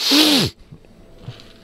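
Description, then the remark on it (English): A single short, half-suppressed sneeze bursts out, followed by a second of near-quiet with a few faint rustles. “I'm trying so hard not to sneeze.”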